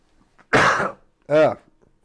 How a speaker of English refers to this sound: I had one of those, hang on one second. I gotta clear my throat here.